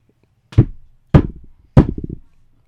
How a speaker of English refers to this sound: All of a sudden, he hears a bang at the door.